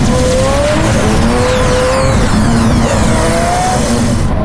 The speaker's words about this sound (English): The 1959 Cadillac Eldorado Biarritz emerges from the transdimensional lift in the front of Graceland at an insane speed.